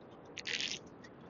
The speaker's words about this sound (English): sorry, I'm just having a sip of coffee.